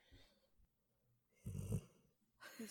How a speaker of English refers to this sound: My dog was just snoring. I'm like, what the hell is that noise? I'm going to try and see if you can pick it up on the mic.